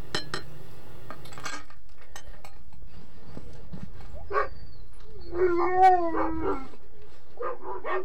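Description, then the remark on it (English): A few sharp metallic clanks of a spoon smacked against the side of a metal pail at a dog team's feeding time ring out loud at first, followed by dogs whining and a rising howl. “And I smack the spoon against the side of the pail.”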